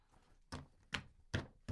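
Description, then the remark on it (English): A stack of paper is straightened against a desk, making four dull, papery thumps in a steady, unhurried rhythm, with no talking. “I wanted the sound effect of me straightening my paper. It comes through the mic.”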